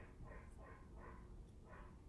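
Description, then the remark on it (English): Dogs barking, a few muffled barks coming in an uneven run over a low background rumble, with no one talking. “Do you hear those? Did Gar let the dogs out?”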